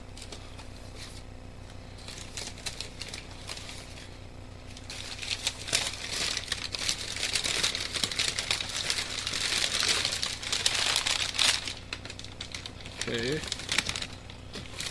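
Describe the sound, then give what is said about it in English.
Paper crinkling and rustling as sheets are handled, busiest through the middle with dense crackly bursts, while a voice briefly speaks. “Random paper.”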